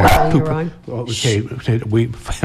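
A dog barks and yips in a quick, uneven run of several short, loud calls, with tonal whining edges between the barks.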